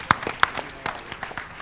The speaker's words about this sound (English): Now we'll give you a big round of applause.